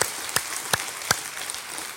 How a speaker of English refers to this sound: Now, just in case he's watching online with the others that are watching online, can we show our love and appreciation for Pastor Corey right now and show him clap? That's for you in case you're watching.